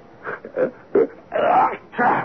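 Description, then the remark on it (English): A drawn-out, voiced sneeze: a few short gasping intakes build up to two loud, moaning bursts near the end, with no talking. “What? Gesundheit.”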